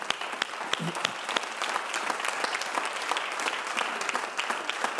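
An audience applauds steadily, dense overlapping claps filling an indoor space at moderate volume for several seconds without any talking.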